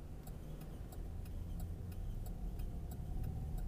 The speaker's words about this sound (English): Sorry, my car's squeaking right by his broadcast. My car. If you're watching News 8 this morning, and there's a guy down by the train station, and you heard somebody squeaking, it's your boy.